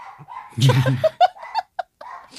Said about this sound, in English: So also, this is just, you know, sorry, Chowder's barking.